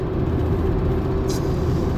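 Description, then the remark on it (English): Steady, muffled road and engine rumble heard from inside a car stuck in traffic, continuous and even throughout, with a brief faint hiss partway through and no one talking. “Stuck in traffic. That's how it go.”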